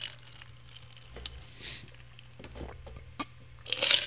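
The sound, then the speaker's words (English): Someone sips Texas tea: soft, scattered mouth clicks and wet smacks lead to a brief, airy slurp near the end, all quiet and with no talking. “Oh man, I gotta take a sip of my good old fashioned Texas tea.”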